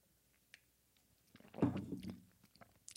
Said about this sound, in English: Excuse me while I take a sip of water.